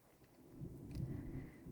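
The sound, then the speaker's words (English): A low, ominous rumble of thunder rolls in and swells over a couple of seconds, deep, with faint rain-like hiss in the background and no voices. “Ominous thunder. Thank you. Perfect timing.”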